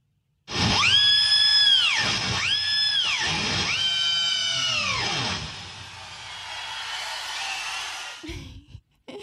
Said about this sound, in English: Okay, there was cheering in the background, which makes me think yes, but then I think that's a trick, so I'm going to say no. Yes, it is a guitar.